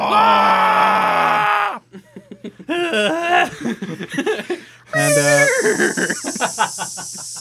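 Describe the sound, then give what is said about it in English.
A loud, sustained shouted war cry, followed by choppy yelling bursts and then another long, strained bellow, all forceful with no clear words. “I'm screaming at this point, by the way. Yeah, so... A war cry.”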